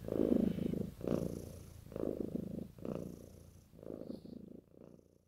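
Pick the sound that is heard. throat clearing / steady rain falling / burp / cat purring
cat purring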